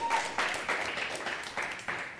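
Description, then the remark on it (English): A crowd applauds after an announcement that the Anger Food Pantry will move into the building in January 2017. The dense, steady clapping rises in brief surges over a couple of seconds, fairly loud and sustained, without any talking. “And this, yeah, you should applaud and clap and say praise God.”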